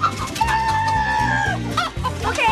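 Several chickens cluck loudly and steadily, a busy overlapping chorus of short clucks with a longer, drawn-out squawk rising above them partway through.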